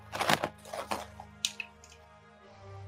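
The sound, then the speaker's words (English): Dice clatter and rattle in a tray as they are rolled for an attack in a tabletop game, a quick burst of hard clicks and tumbles that settles into a few lighter taps, fairly quiet, with no talking. “Again, this is why I have too many dice in my tray.”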